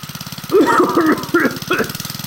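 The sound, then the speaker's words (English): A small engine that gives off smoke chugs at a steady, rapid idle throughout, with a voice briefly sounding over the rumble in the middle before the engine carries on alone. “Yeah, we really should upgrade to like smokeless engine of some kind.”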